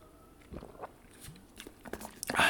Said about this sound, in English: let me have a sip of my tasty little beverage here